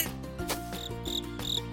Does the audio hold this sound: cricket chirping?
yes